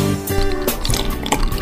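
A drink pours into a glass, a steady liquid gurgle with a few splashy bursts and rising fill tones, no one speaking.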